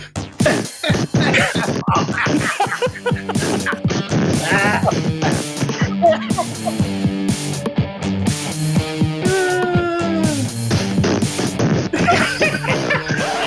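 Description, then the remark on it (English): Sputtering fart noises made with the mouth, a string of quick buzzing bursts over loud, busy background music that plays throughout. “Every time when I think it's going to end, and then he starts making the fart noises.”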